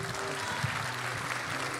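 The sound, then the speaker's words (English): An audience applauds a married couple steadily, a dense wash of many hands clapping at an even, moderate loudness for the full couple of seconds, with no voices standing out. “So give them a big round of applause real quick.”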